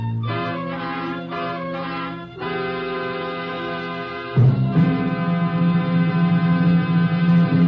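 NBC broadcast network chimes: three sustained, ringing tones played one after another, each lingering for a couple of seconds, the last note lower and louder, with no voices.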